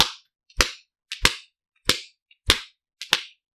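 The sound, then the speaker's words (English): A standing person repeatedly slaps their own bare buttocks with a hand: six loud, crisp smacks at a steady rhythm of roughly one every half-second, each a sharp crack with a brief tail and no voices. “I'm just going to stand here and keep hitting myself.”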